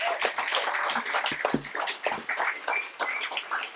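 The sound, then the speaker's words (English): An audience applauds the speakers at an event, a dense wash of many hands clapping at once, holding steady and fairly loud for a few seconds with no voices over it. “So let's give all the speakers another round of applause.”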